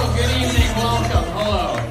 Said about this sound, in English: That's … bringing him up on the stage in Austin, Texas. Okay, that's here he comes. He's getting a big round of applause.